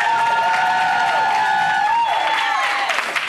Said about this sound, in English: Yes, we are here live at the Magnet Theater. Audience, give yourselves a round of applause.